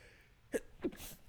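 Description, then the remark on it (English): A single sneeze: two quick sharp bursts and then a breathy hiss trailing off, with no talking around it. “I sneezed.”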